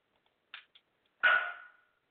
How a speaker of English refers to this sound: And Squeaker's barking. Will you shut up?